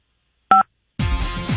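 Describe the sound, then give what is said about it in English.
A single short phone keypad tone sounds for the number 5, a clean electronic beep after a moment of silence, then a loud, dense burst of noise takes over. “And all you have to do is remotely fire it by hitting number 5 on your phone.”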